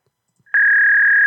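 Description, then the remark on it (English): A dial-up modem connection tone heard on a phone call to Taco Bell: a single steady, high-pitched electronic whine that starts abruptly after a brief silence and holds loud and unbroken, with no talking over it. “They still on dial-up.”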